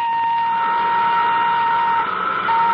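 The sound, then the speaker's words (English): Nuclear jet number one of the XIP ship is cut in and starts up, whining steadily with a loud, bright, sustained tone over a rushing roar that holds nearly constant throughout, with no voices. “Cut in nuclear jet number one.”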